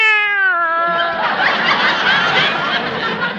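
A single drawn-out meow from a plump female cat slides downward in pitch, then breaks into a long, breathy, raspy noise that fills the rest of the moment. It's fairly loud, with no talking.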